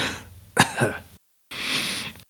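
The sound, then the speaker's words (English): A voice acts out a rough, hacking cough of a woman coughing up a little blood after being blasted in the chest and shoulder: a sharp double burst, a brief pause, then a longer breathy, strained hack, fairly loud with no talking. “She drops down and she like coughs up a little blood.”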